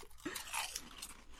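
Crisp crunching of reconstituted potato snack chips being bitten and chewed, a quick burst of brittle crackles followed by softer munching, fairly quiet with no talking.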